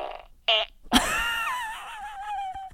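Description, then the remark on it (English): A fart machine sounds a brief buzzy fart blast, then a longer drawn-out electronic fart that wavers downward in pitch and trails off in a thin squeak, loud with no talking. “I do have my fart machine on me, and this is my favorite sound.”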